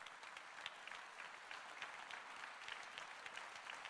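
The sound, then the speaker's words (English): Sustained applause from a large gathering saluting veterans standing all over the building, a dense, steady patter of many hands clapping at once that holds evenly throughout, with no voices rising above it. “I want you to look at the true heroes of America, and we salute you with applause.”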